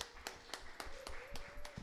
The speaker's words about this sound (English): So round of applause to you guys for being here.